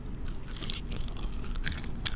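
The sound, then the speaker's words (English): Wet chewing of meat nuggets with the microphone inside the mouth, with repeated crunchy bites and small squeaky notes, steady and loud, with no voices. “Do you hear it squeak? Oh, yeah. I don't like that. Just chewing on meat.”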